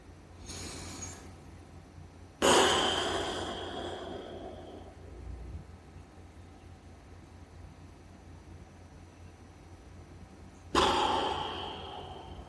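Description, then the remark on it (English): Slow, deep breaths in a guided deep-breathing exercise: a few long airy inhales and exhales, spaced several seconds apart with quiet pauses between them, no talking. “Give it a few more seconds of deep breathing.”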